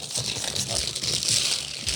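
Continuous crinkling and rustling of packing material, which looks like a beehive, as a gift package is unwrapped; a dense crackly texture with irregular bursts, fairly loud and steady throughout, with no voices.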